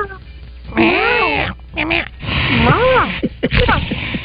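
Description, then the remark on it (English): A woman's voice imitates a cat, giving two or three drawn-out, wavering meows in quick succession, fairly loud, with brief noisy breaths between them. “She was a cat.”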